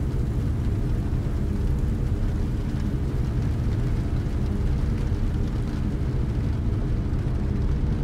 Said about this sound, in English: Walking around the rotating lookout, you hear the hum of the motors, a peaceful and steady sound.